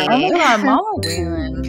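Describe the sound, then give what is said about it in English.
Voices talk briefly, then glasses clink together once in a toast, a bright ringing tone that lingers and fades under a low murmur of speech. “Well, cheers to Mama Waylon.”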